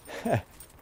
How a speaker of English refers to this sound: Oh, there's the dog again. He's running towards me again.